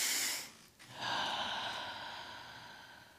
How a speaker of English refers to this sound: And take a breath into your stomach. Breathe with me.